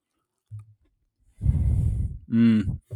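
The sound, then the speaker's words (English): A soft, muffled tearing and squishing as the soft inside of a brownie is broken apart, lasting under a second, followed by an audible breath and faint low thumps. “And now this is the inside.”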